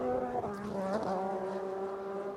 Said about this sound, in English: Race cars sound better at night. There is just no other way around that. It's something to do with the density of the air. It's what somebody told me.